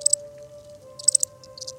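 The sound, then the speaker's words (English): Crickets chirp in short, high-pitched bursts of rapid pulses, separated by brief pauses, over a faint steady drone in the background. No one speaks. “As they listened to the crickets, they didn't notice that Grandmother had found them and was listening quietly on the other side of the tree.”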